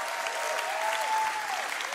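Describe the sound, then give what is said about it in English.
Steady audience applause for a group of young people going up, a dense crackle of many hands clapping at a fairly even loudness, with a faint tone gliding through the middle. “Come on, give them a big round of applause.”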